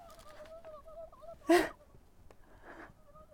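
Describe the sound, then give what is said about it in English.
Wild turkeys gobble outdoors, with a loud, rough burst of warbling calls midway and a fainter gobble shortly after, over a steady wavering tone in the background. “I thought it was wild turkeys. It is wild turkeys.”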